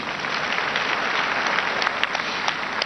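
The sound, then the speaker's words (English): A crowd applauds steadily, a dense wash of many hands clapping at an even, fairly loud level with a few sharper individual claps standing out, and no one speaking over it; the applause is for people who shared when they believe their life began. “Let's clap for them.”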